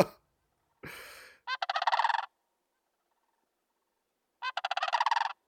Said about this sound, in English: the squawks and squabbles of Sand Hill Crane. Squawk, squabble.